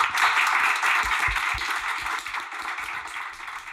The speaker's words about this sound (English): And please give a massive round of applause.